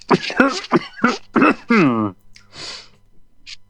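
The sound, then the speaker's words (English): A harsh, raspy smoker's cough: several rough hacking bursts and a strained, croaky groan, then a few quieter breathy wheezes trailing off, with no talking. “a suite of chamber music for violin, viola, cello, and smoker's cough.”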